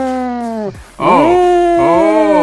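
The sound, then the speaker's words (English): A voice imitates a tornado siren with a loud, wavering wail that slides down, breaks briefly, then swells back up and holds a steady high tone. “What's my tornado siren for everybody?”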